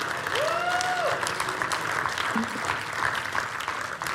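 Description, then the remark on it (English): An audience claps hands together in a dense, sustained burst of applause, with a few scattered shouts and a sung or called note rising over the steady clapping. “Somebody clap their hands right now.”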